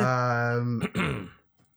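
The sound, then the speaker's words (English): A man clears his throat: a steady, low voiced hum that breaks into a short, raspy burst of noise, then fades to quiet. “just clear my throat.”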